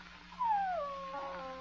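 A puppy gives a short, high whine that slides downward, followed by a fainter drawn-out whimper trailing off, heard alone over a low steady hum.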